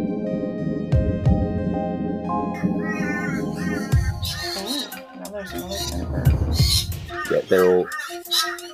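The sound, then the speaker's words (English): Several parrots squawk in harsh, irregular bursts, loud, their raucous calls overlapping after a stretch of steady low rumble at the start. “They're parrots. I just can't tell which ones.”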